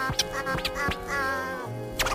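A parrot makes a sustained, nasal, buzzy call broken by short raspy squawks, fairly loud, with a harsh burst at the end and no talking.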